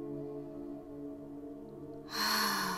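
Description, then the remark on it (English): A cleansing breath in through the nose and out through the mouth, as if fogging up a glass, over a soft, steady tonal drone, ending in a loud, airy exhale that lasts nearly a second. “And we'll breathe in through the nose and breathe out through the mouth.”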